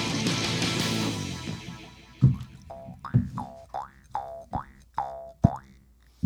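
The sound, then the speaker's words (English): A jaw harp twangs in a steady rhythm of about eight plucked notes, each with a sharp attack and a buzzing, vowel-like sweep, following a brief wash of noisy sound at the start. “What were you just playing there, buddy? That's my... what's that called? It's called a jaw harp.”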